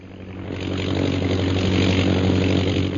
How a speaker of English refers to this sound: What's that? Master. Yes. The British plane. They are directly overhead, Master. It must be brought down.